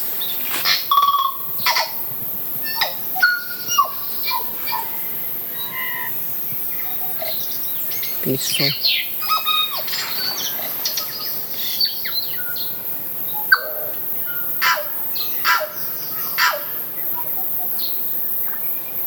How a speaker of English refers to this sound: But this is, if you just so that you want to identify the birdsong, what you listen to, these little recordings. Now, this is the tui.